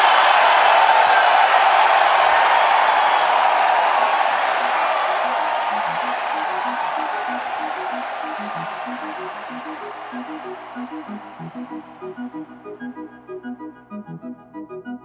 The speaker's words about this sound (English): The putt went in no problem. And the crowd erupted immediately, of course.